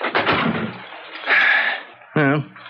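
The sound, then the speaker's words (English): An unlocked front door rattles open with a creaking swing, then shuts, followed by a brief, sharp vocal sound like a gasp; fairly loud. “Come on in. Door's open.”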